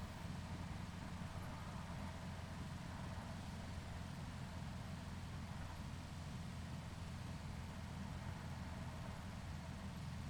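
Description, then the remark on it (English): A steady, droning engine rumble as a bus drives along through desert with saguaro cacti in early morning light, heavy in the low end with a constant road hiss, holding an even loudness throughout with no voices. “The bus carries you further into the heart of nature.”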